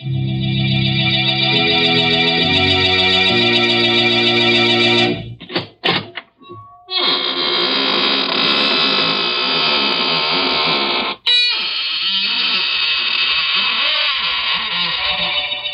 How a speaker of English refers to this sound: Good evening, friends. This is your host of the Inner Sanctum, welcoming you again through the squeaking door for an hallucinating good time. Why am I smiling? But I always smile when I open the squeaking door on Tuesday nights.